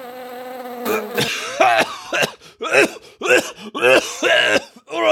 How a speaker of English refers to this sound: Do Nothing Man sniffs around behind him, but catches his throat by inhaling a gnat.